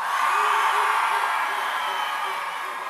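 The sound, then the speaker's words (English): An audience cheers and whoops loudly for team dog in a cats versus dogs vote, in a dense, steady roar that holds for about three seconds, with a few higher yells poking through and the noise easing slightly toward the end. “So if you're team dog, make some noise.”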